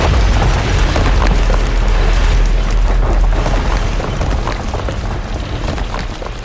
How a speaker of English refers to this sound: So you pop onto the next one, and you hear a tremendous crash as the golem pushes one of these pillars over, and it crashes down into the square.